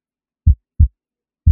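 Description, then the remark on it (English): A deep, muffled heartbeat thumps three times in an otherwise silent space, with the first two beats close together and the third arriving after a short pause. “I would kill to be alone, to find a moment of loneliness, a moment of silence in my own mind where I'm not hearing people breathe, where I'm not hearing people's heartbeats.”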